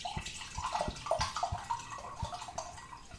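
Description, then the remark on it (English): Full-bodied wine of 15% alcohol glugs from a bottle into a big glass, a steady pour with a burbling stream and several soft gulping pulses, heard alone without talking. “And I'm going to pour a glass right now.”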